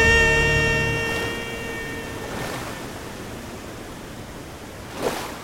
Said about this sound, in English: So the three of them went all the way over the edge of the waterfall and fell so far. Until they splashed, fortunately, into the deep, deep water down below.